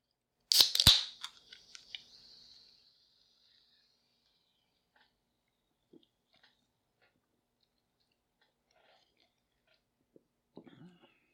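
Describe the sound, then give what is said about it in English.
A can of orange vanilla Coke cracks open with a couple of sharp pops and a fizzing hiss that fades over two seconds, followed by long quiet stretches broken by faint clicks and soft sipping sounds. “So yeah, I'm going to get a sip off of my orange vanilla Coke.”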